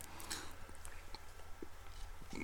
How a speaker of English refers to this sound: Excuse me. I need to take a sip.